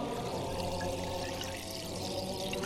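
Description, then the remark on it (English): Sparkling natural spring water, bottled at Elmhurst Spring, pours steadily into a glass close to the microphone, a continuous rushing fizz with bubbling hiss throughout, no voices. “Oops, top me up.”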